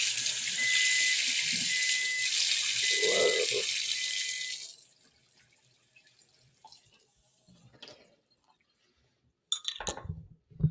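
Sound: hot water running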